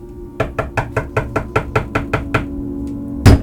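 A rapid, even series of about ten sharp, clear knocks, followed after a short pause by a single louder thump, like a door bumping shut. No one speaks.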